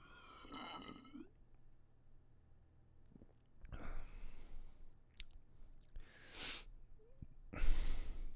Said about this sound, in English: Here is Modelo Especial Golden Full Flavored Pilsner Style Lager with a clean, crisp finish. I will take a sip just now and then I'll explain to you my experience with this beer. Here we go. Now a regular sip without sloshing.